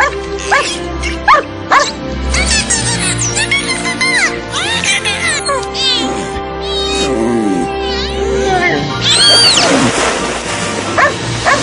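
A dog barks in short, repeated bursts, answered by a dolphin's high, squeaky whistles and chirps, some sweeping up and down, all over a busy, continuous background of sound; the dog and dolphin are communicating with each other.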